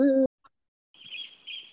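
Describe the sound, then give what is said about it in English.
Birds chirp in a quick, high twittering burst that runs for about a second after a brief tonal call and a short pause, fairly soft and with no talking. “The birds are cheering you on”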